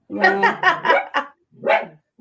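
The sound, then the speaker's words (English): A dachshund named Nini, kept in a kennel in an office, barks in a quick burst of about five sharp barks, then pauses briefly before one more bark. “Your dogs don't. They're letting you know.”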